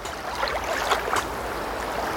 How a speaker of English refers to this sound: Here is the lake, the water.